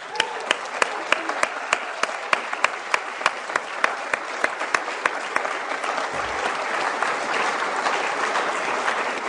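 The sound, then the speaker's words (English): An audience bursts into steady applause for a newly received image of the planet Pluto. Sharp individual claps stand out at first before blending into a dense, sustained wash of clapping that continues without talk. “And how about a round of applause for that beautiful planet?”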